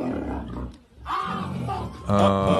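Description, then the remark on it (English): A lion roars loudly and throatily in two long rumbling bursts separated by a brief pause, the second swelling even stronger, while a man puts his fingers inside its mouth. “He's putting fingers inside the lion's mouth.”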